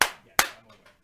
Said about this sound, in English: Do a clap.